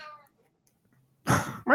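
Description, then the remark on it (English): A cat named Felix meows loudly indoors in a room with the door shut, a short harsh cry after a moment of quiet, with another call starting right after; a faint tonal trail is audible at the very start. “Meow. Yeah, that's Felix. He's in here with me with the door shut, and he's not.”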